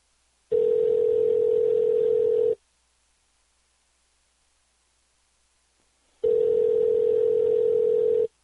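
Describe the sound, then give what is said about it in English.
A telephone rings on the line, two steady, buzzy ringback tones of about two seconds each, separated by a long silent pause. Clear, with no one talking. “Here's a Wendy's review while it rings from Yelp.”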